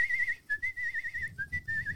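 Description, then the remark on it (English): A person whistles a bright, wavering melody, the tone sliding between a few nearby pitches in short connected phrases with brief breaths between them, over faint low background rumble. “I can whistle like a Disney princess.”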